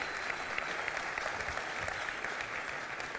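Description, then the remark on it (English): A large church crowd at Gateway applauds steadily for a few seconds, dense overlapping clapping with a few scattered cheers mixed in, fairly loud and sustained throughout. They are cheering the volunteer count topping 1,000, as a warm-up. “You need to get used to cheering today and clapping, okay? So that was a good warm-up.”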